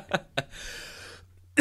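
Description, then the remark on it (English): Two sharp coughs in quick succession, then a strained, raspy breath lasting about a second, and another abrupt cough at the end. Fairly loud, with no talking. A person coughing after a sip of warm apple cider went down the wrong pipe. “I'm drinking some warm apple cider. And it went down the wrong pipe.”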